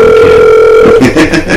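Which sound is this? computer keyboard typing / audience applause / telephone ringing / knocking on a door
telephone ringing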